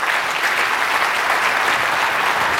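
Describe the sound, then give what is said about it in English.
An audience claps steadily in a dense, sustained wash of applause, loud and even throughout with no voices standing out. “I'll let the applause go for a second.”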